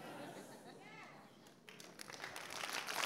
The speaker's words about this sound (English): No, stop clapping.